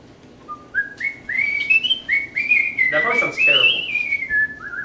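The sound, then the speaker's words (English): Someone whistles a wavering tune, the pitch sliding and stepping through a short melody over a few seconds, with a brief breathy burst midway and no talking. “You are not allowed to speak about my whistling in such tones.”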